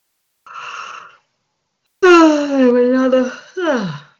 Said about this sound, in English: Another yawn here. Energy's moving.